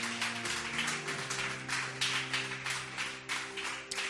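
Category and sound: crowd, audience hand clapping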